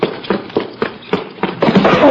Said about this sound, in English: what was that? I don't know. It sounded like an explosion of some kind.